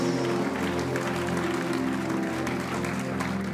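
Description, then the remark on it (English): An audience at a church service breaks into sustained, dense applause as a clap offering to the Lord, holding steady for several seconds, the clapping full, with held musical tones sounding underneath. “Somebody give the Lord a clap offering in the house.”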